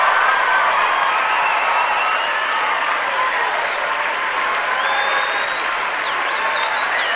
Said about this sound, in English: For the next 4 to 6 minutes, the place wouldn't stop clapping and shouting. They couldn't stop. They couldn't continue. And someone asked, why are people reacting this way to a simple prayer? Why are they reacting like this?